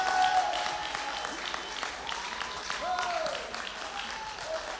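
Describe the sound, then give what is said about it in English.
A church audience claps hands for the Lord before taking their seats, a dense, sustained burst of applause, with crowd noise and scattered voices mixed in, filling a large room at moderate loudness. “Give the Lord a clap of hands to take your seat.”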